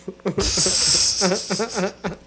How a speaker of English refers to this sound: What, I'm not allowed to yawn? Not in front of me? I see you hide it, though.